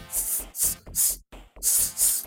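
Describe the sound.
A voice makes a rapid series of sharp, bright hissing "sss" sounds, about five quick bursts in a steady rhythm, loud and with no talking.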